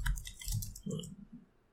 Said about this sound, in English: Why do I keep typing 1d6? What's wrong with me?